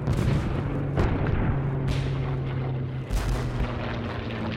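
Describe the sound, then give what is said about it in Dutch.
Heavy booming explosions from bombing warplanes early on 10 May 1940, when war broke out, like very heavy thunder: three or four loud blasts over a continuous roaring rumble and a low droning hum underneath. No voices are heard. “Maar dan hoort hij de vliegtuigen. Harde klappen, alsof het heel hard onweert.”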